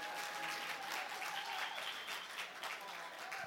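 An audience gives a requested courtesy clap: steady, polite applause, many hands clapping in a dense patter that holds at an even level for a few seconds without cheering.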